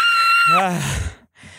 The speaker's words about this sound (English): The breathing exercise was just screaming? Yes. When you scream, you breathe. That's what they say. You can't be screaming unless you're breathing.